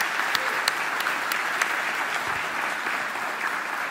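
A church audience applauding students steadily, a dense wash of many hands clapping at once with a few sharper individual claps standing out, sustained at an even level throughout.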